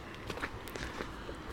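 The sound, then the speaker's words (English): Footsteps of a person walking home outdoors after getting off a bus, at a steady pace: soft irregular scuffs over a constant low background hum, quiet. “I'm just walking home after the bus now and I'm kind of...”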